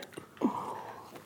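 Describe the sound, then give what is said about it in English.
A single hiccup breaks in with a sudden gulping catch, followed by a strained, drawn-out voiced squeak that fades out. It's fairly faint overall, with no talking around it. “He's dying of hiccups right now.”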